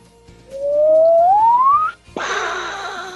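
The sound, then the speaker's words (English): A voice imitates a game-show buzzer as a player's buzz-in sound for a Jeopardy-style game: a loud, steadily rising whoop sliding upward for over a second, a short break, then a harsh, raspy buzzing blast. “My new buzzer is...”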